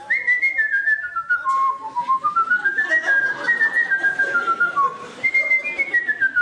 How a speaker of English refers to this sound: who are speakers of Mazateco, but who, incredibly, barter for goods entirely by means of whistling.